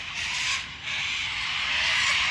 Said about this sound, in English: Do you hear that noise? Those are sulfur-crested cockatoos. They have a big white body, they have a yellow crest, and they seem to be having a very big feast on a pond. And they like sitting on paper bark trees. There are hundreds of them everywhere.